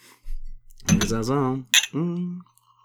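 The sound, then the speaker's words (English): Glasses of green milk clink together in a toast, two bright, sharp taps, with voiced murmuring sounds running underneath and between them. “We are drinking green milk, just as seen drunk by Luke Skywalker from the very teat of the...”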